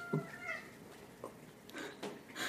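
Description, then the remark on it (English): A person mimics a cat's meow: a drawn-out, tonal mewl followed by a few shorter, breathy meow-like calls spread over a couple of seconds, fairly quiet and with no talking. “sounds like a cat.”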